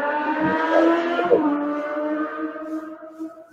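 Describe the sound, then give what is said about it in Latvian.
A fast car or motorcycle passes by, its engine a loud, steady harmonic whine over a low rumble that gradually drops in pitch and fades over a few seconds. No one speaks. “Kāds aizdots ar ātru automobīlu? Vai ar motociklu?”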